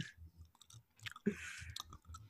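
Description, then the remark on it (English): Wet chewing of peach candy right at the microphone, a steady run of soft squelching bites and smacks with a few sharper clicks, no talking. “Just chewing in the mic, bro.”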